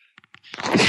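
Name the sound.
sneeze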